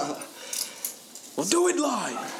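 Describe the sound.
A few light, scattered metallic clinks as keys are set down, brief and fairly quiet, followed by a person beginning to speak.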